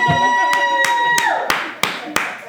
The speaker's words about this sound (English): Motherfucker, give my village a goddamn clap again.